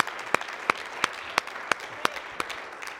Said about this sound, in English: Come on, give Him another hand clap of praise if you wouldn't mind, please, church.